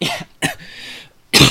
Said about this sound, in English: Oh, pardon me. But cough, cough, cough.